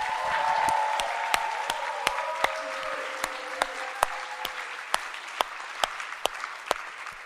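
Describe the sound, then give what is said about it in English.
An audience at the Outreach Boot Camp claps for the organisers and coaches in a dense, steady burst that gradually thins out, leaving a few scattered, sharp individual claps ringing out as the applause fades. “Should we just give them a super duper round of applause?”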